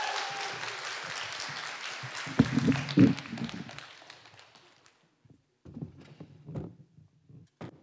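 An audience claps their hands in a dense, steady burst of applause that swells briefly and then fades out over a few seconds, leaving a few scattered quieter sounds and murmurs.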